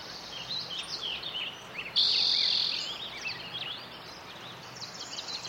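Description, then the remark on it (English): A lively spring soundscape recorded in 2004, with many birds chirping and warbling together and a steady buzzing insect drone that swells loudly for a moment before settling back beneath the chorus. “the drought is affecting the bird populations. You'll hear a nice, robust piece in 2004.”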